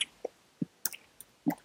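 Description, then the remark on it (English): Chewing with wet lip smacks, a handful of short squishy and clicky bursts at an uneven pace, with no voices. “Damn, who munching away over there?”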